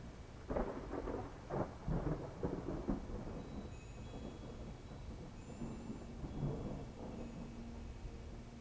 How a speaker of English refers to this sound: The rain has reached your distant place now, so you retreat inside the teepee.